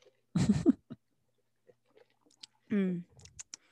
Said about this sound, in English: And let me sip.